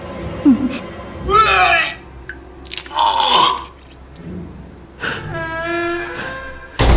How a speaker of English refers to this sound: Todd shuts the freezer door, and he wipes his mouth with his sleeve. The door, slamming shut behind him, breaks the silence.